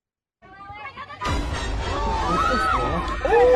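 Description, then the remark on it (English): A soccer game crowd in a video being played swells into a loud, steady roar of cheering and babble after a few seconds of scattered voices, with shrill rising and falling tones cutting through near the end. “So this is a soccer game.”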